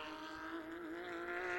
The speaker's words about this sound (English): Also out on the track, the other engine you can hear at the moment is the 85. That's the Pedersen car.